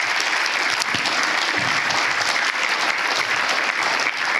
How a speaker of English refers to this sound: And if we can we just give them a round of applause? I want to honor them this morning.